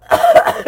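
A short, loud, raspy cough running into a throat clear, lasting under a second with a rough, voiced quality.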